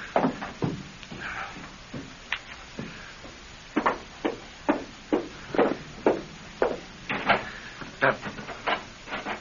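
A stuck porch door rattles and thumps as someone trying to get out repeatedly shoves and jerks at it, a run of sharp knocks and bangs in an uneven, then steadier rhythm over faint background hiss.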